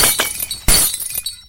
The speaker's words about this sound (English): This time she screamed so loud that the window shattered and some of the light bulbs exploded.